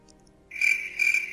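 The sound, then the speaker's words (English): A cricket chirping sound effect: a high, steady trill that starts abruptly and swells in two pulses, heard alone with no voices over it. “Can you give yourself crickets?”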